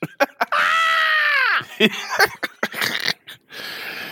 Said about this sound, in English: He's screaming at you